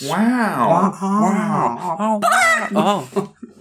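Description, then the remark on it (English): A person loudly imitates a chicken, letting out a run of squawking, warbling clucks that rise and fall in pitch for a few seconds before trailing off. “That was unexpectedly loud bork.”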